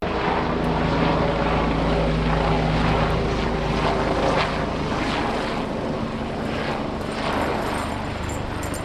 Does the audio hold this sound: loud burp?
no